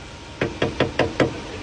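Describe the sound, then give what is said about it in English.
A hammer strikes a rock-hard old hamburger, found in its paper wrapping in a car's wheel well and at least a year or two old, five times in quick, even succession, each blow a sharp, dull knock with no talking in between. “That's a hammer hitting the burger.”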